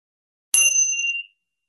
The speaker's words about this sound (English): And I'll ring my bell. And just seeing if you can listen to hear the beginning, middle, and end of the sound of the bell.